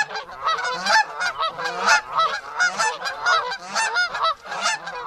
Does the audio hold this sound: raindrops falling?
no